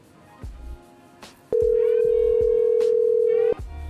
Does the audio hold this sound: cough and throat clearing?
no